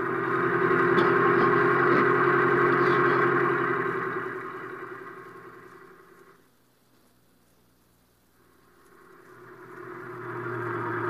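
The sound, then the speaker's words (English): A taxi cab's engine hums steadily as the cab drives along, the rumble growing faint and nearly disappearing for a couple of seconds before swelling back up. No voices are heard. “Now quit making with the jokes and start making with that gas pedal.”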